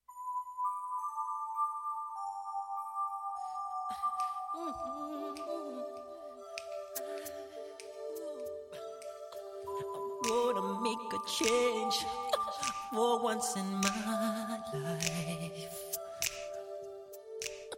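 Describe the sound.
A song played on community radio station 3CR in Melbourne, Australia, opens with sustained, bright synth tones, then crisp percussion and a steady beat join in as a male singer's voice comes through over the fuller arrangement.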